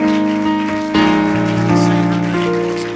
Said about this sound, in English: Let's stand to our feet. We're going to clap our hands together.